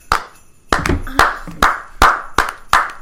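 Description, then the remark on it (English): Polite golf clapping for a Member of the Year 2018 award: a handful of slow, evenly spaced hand claps, about seven in three seconds, crisp, with no voices over them. “Yes, are we golf clapping on that?”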